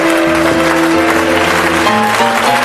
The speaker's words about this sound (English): Let's give him a hand clap of welcome as he comes.